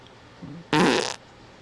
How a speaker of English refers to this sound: Colon laughs? Colon laughs? I think that's called a fart.